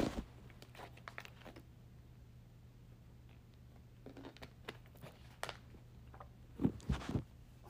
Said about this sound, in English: Let me get some water, y'all. Hold on.